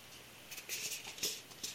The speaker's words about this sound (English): I'm just going to take a little sip of my drink here.